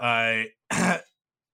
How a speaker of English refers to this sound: Oh, I've got the hiccups. I've been talking too much.